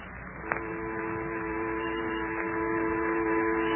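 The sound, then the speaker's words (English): A low, dull buzzing drones steadily throughout, with sustained tonal layers and a faint rising intensity; a single sharp click sounds near the start. No one speaks. “A low, dull, buzzing sound danced in my ears.”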